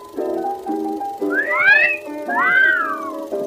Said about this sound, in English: The hot dogs at our concession stand do rate an appreciative whistle.